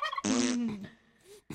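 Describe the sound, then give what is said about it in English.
A loud, buzzy fart lasting about half a second, with a low rasping tone and a hissy edge, trailing into softer faint noises before a brief sound at the end. “Oh, sorry. I didn't mean to fart.”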